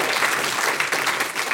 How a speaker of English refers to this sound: She's been around a while, so I assume that's what the applause was.